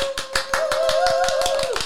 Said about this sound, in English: Round of applause.